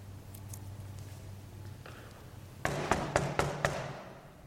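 A quick series of five sharp knocks on a door, evenly spaced, after a stretch of quiet low hum.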